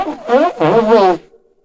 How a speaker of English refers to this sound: What's this? What was that? Just a bit of reverb on your sneeze. I thought it sounded quite nice. It just makes it kind of classic. That's horrible. A classic vibe.